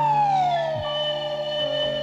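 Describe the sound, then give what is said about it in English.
A slide whistle glides slowly downward in pitch, then holds a steady tone, played loudly over low sustained backing notes. “They poo-poo a lot of things on this list of the obnoxious sounds, but, you know, there's nothing more soothing than the slide whistle.”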